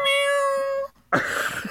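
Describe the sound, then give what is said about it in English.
A cat meows twice, fairly loud: first a long, steady, high-pitched call, then after a brief silence a harsher, breathier meow. No one speaks. “That cat kills me every time.”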